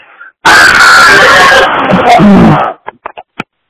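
A single loud, raw scream erupts and holds for about two seconds, harsh and strained, then breaks off into a few short gasping bursts.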